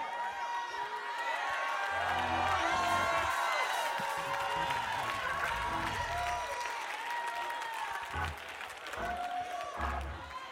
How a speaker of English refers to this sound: I came to give him glory. I came to clap my hands.